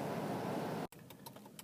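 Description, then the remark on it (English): A truck rumbles past with a steady, broad roar that cuts off abruptly, followed by quieter background noise with faint light clinking. “Ooh, there's a truck.”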